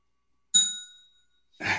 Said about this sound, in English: You're gonna hit bells. I'm gonna hit bells. Yeah. Bells for days.